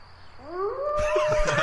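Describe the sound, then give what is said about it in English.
A drawn-out, wavering howl that slides upward in pitch and then holds a strained, catlike tone, growing rougher and noisier toward the end, with no speech. “I forgot that howl.”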